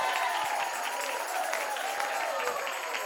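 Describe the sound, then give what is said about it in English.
A crowd at a sermon claps and shouts in praise, a dense, unbroken wash of applause with raised voices mixed in, holding at a fairly even loudness throughout. “Somebody shout. Somebody clap. Somebody give him praise.”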